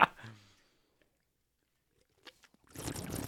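Someone takes a drink of Four Loko from a can: a short sound at the start, a quiet pause, a couple of soft gulps, then a breathy, noisy exhale.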